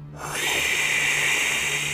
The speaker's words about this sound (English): we heard a voice. Unlike anything I've ever heard before. Like fingernails on a chalkboard, sandpaper across glass, almost excruciating to listen to, and I swear I could barely make out a word.